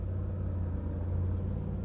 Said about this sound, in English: I think any wind that's out here tonight is caused by those cars going by.